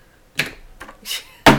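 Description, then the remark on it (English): A toy Thor hammer raps like a gavel, about four sharp knocks spaced unevenly, the last one the loudest, with no talking over them. “Where is my Thor hammer? Ah, there it is.”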